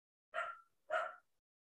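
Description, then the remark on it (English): A puppy barks twice, two short, high yappy barks about half a second apart, clear with silence around them and no talking. “Yeah, and the puppy is like, I'm gonna go with Sophia.”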